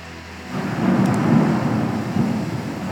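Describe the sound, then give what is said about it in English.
A deep, rolling rumble of thunder swells in after a quiet moment and lingers with a broad, heavy roar, steady through to the end. “Because, it's thunder.”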